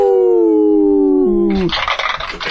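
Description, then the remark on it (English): Outsidey, an outdoor neighborhood cat standing outside the studio, lets out a long, loud, drawn-out yowl that holds a steady wavering pitch, then slides downward before cutting into a burst of harsh, rushing noise. No one speaks. “Oh, the live studio audience, like outside our studio, standing around in the elements.”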